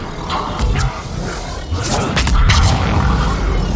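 A video game biotic combo explosion, set off by firing a biotic power twice in quick succession: a loud, booming blast with deep rumbling low end and crackling bursts, followed by a second swell of roaring energy that sustains to the end.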